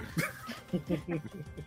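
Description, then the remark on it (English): A person mimics a dog named James as it tackles Arnil, letting out a quick run of short, yappy barking sounds in close succession, fairly loud, with no other talking around them. “Arnil gets tackled by the dog.”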